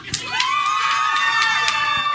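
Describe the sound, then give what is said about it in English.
A crowd cheers and shouts together in a loud, sustained burst in response to a call to cheer if they think Harry is a horcrux, with high-pitched whoops and screams rising above the steady roar of many voices throughout. “Number three was, if you really think that Harry is a horcrux, make your embarrassing cheering here.”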